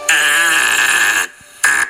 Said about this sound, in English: I ran it through some of my machinery. This is the fart reversed.